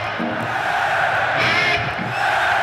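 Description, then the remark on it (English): A big concert crowd shouts back in unison in a call and response with a guitarist, a loud, continuous roar of voices with rising chanted surges that fill the whole short stretch without pause. “Well, here's an example of …'s call and response.”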